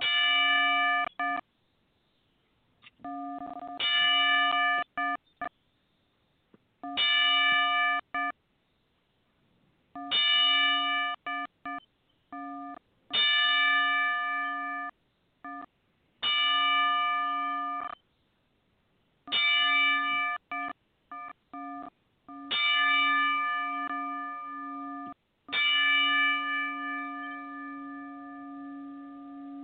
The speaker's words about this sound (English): we toll the bell 10 times in memory of Little Dynamite, Tony Costa